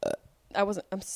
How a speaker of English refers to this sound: I'm such a horrible person. I could have just not burped or moved the microphone